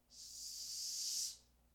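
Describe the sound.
A person imitates a snake with one sustained, breathy hiss lasting just over a second, steady in loudness before cutting off, with no talking.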